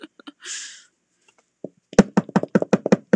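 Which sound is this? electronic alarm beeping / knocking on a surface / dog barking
knocking on a surface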